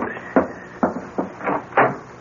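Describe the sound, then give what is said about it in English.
The front door of an old mansion used as a ski lodge on Manitou Mountain is opened for a visitor, with a short series of knocking clunks and latch rattles spaced unevenly over a couple of seconds. No voices. “Oh, there's somebody at the front door. I'll get it.”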